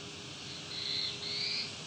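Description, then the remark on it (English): A black-throated blue warbler sings nearby, two thin, buzzy high phrases in quick succession, fairly soft over a steady hiss of outdoor background noise. “That was a black with a blue warbler, very close to me.”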